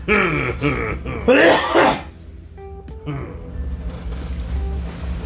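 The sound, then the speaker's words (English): A person makes a few loud, exaggerated coughs and raspy throat-clearing noises, then the sound drops to a quiet background hum with faint tones. “Coughing like an old Japanese man.”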